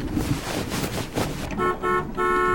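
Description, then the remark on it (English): Loud rushing highway traffic noise at 2 p.m. gives way to a car horn honking in three quick, insistent blasts, sustained, with the roar of passing vehicles continuing underneath. “Be quiet! I'm sleeping in traffic.”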